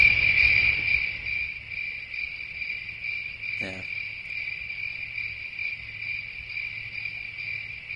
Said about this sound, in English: A lot of buildup just for crickets.